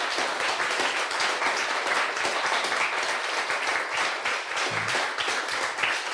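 audience clapping loudly

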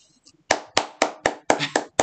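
people clapping

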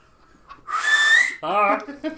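person whistling

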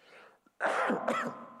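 cough

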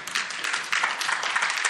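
audience clapping and cheering

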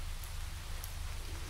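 rain falling

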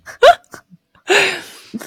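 hiccup

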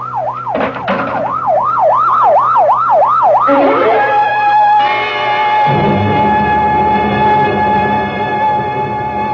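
ambulance siren approaching

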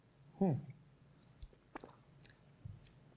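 sipping water

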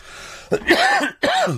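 cough

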